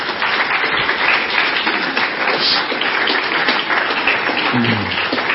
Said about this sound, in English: We can clap for them.